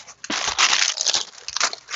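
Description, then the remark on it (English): A crinkly, crunching rustle of a package of vanilla sandwich cookies being handled and put up onto a shelf, fairly loud, with irregular bursts of crackling over about two seconds and no talking. “There's a crunching sound, but that's because I'm putting something crunchy up onto the shelf.”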